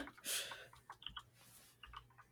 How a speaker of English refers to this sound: I hear Googling. I hear people typing.